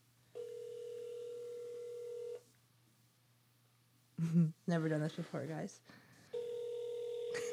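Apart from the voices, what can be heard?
phone dialing touch tones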